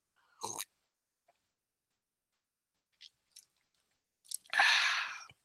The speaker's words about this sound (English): So let me have a sip. And to prove that I'm going to have a sip, I'm going to try and get it close to my headset so you can actually hear me sipping on it.